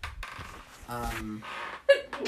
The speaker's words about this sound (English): Bless you. Adorable sneeze.